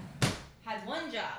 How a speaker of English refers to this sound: Let me close the door again.